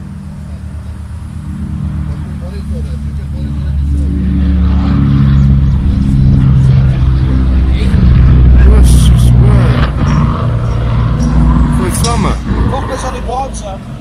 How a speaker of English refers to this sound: Sounded like something let loose there. Yeah, about 5 seconds before the end of that, it sounded like there was a crump from that engine, and it didn't sound good, did it?